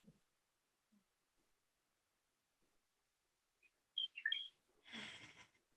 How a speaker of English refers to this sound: I hear the birds. Thank you for bringing the birds.